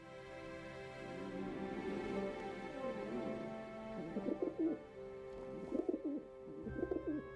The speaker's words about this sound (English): Ah, I thought it was his tummy, but it was just a bird.